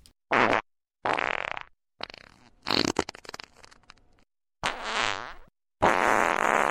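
A string of six loud fart sound effects in quick succession, ranging from short blasts to longer sputtering, crackling ones, with brief silences between and no voices.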